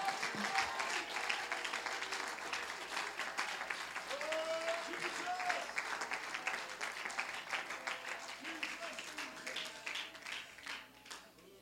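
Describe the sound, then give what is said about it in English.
A crowd claps hands unto the Lord in sustained, dense applause, with faint voices and a few shouts mixed in beneath the steady clatter. “Let's clap our hands unto the Lord.”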